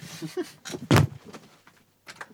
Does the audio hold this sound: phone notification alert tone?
no